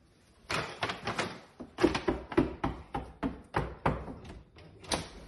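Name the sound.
knocking on a door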